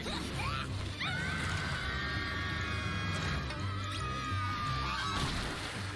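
Ducks quack over a dense, busy background of clatter and noise, with several honking calls overlapping through the scene at a steady, fairly loud level.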